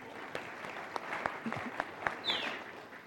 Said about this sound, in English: Can we give her a clap and just